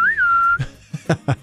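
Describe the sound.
A person whistles a spaghetti western-style theme melody, swooping up into one long, steady high note, then breaking off into a few short, punchy vocal bursts.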